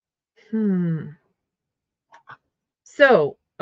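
A puppy lets out a few whiny, nasal yelps: a drawn-out cry, a couple of soft clicks, then a sharper falling whimper and a final short yelp, with no talking.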